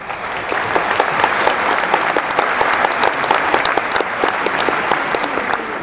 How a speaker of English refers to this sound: Round of applause.